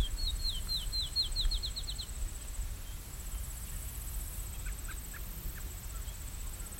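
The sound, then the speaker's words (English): A raven calls from far off, a quick run of about ten high, squawky notes, then a few fainter scattered calls over steady outdoor rumble. “You might be forgiven if you think that sounds like a parrot, but it's a raven somewhere.”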